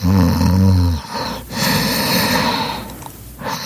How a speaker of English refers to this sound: Now here's something funny about cats. They snore. Loud. At least several of mine do. So she's laying there, snoring away.